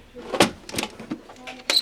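A brass key clicks and rattles in the lock of a teacher's desk at a boarding school as the school caretaker unlocks it, followed by the wooden drawer sliding open with a few sharp knocks, fairly quiet.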